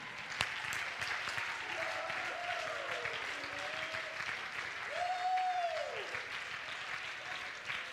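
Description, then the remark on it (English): An audience at a church service claps their hands continuously for several seconds, a dense, steady patter of applause, with a few raised voices calling out over it. “Clap your hands.”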